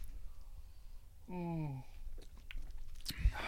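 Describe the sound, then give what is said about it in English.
A short, low, drawn-out moan hums mid-sip of Camp Crystal Lake Nuggets, a double dry-hopped double IPA, amid quiet mouth and slurping noises, followed by a brief sharp clatter near the end. “Ooh, I love the moan mid sip.”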